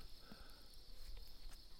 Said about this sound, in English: I can hear bugs around me, and I hear crickets in the grass, and it's just very peaceful out here, you know.